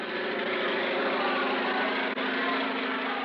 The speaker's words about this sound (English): Well, haven't you heard, old man? Louis Blériot, the French flyer, is crossing the channel in his aeroplane.